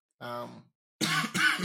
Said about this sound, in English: But my cough still lingers.